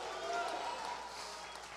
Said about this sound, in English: I want everybody to jump to your feet and clap your hands and shout hallelujah.